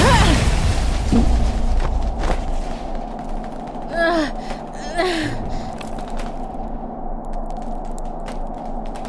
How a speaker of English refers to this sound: Just then, another explosion in the middle of the street that launched me forward.